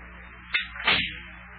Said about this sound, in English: I'll just close the front door here so the cold air don't get into Big John's house.